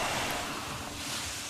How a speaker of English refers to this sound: And I think the sounds of ironing are sort of represent that breathing, which is like the steam sort of breathes through the fabric. It's exhaling. The steam is exhaling. And so that makes you exhale as well.